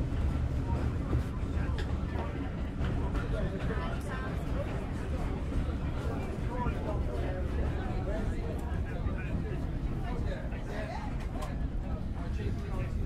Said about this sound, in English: I've just made it. Just caught the train in time. It's absolutely packed as we pull out of Alresford Station. It's a beautiful late December morning. The train's full of service people and their families.